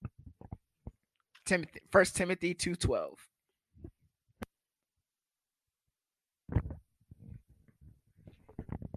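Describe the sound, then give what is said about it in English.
A single loud sneeze bursts out with a voiced, breathy rush, surrounded by small clicks and quiet pauses, then someone starts speaking again. “Bless you.”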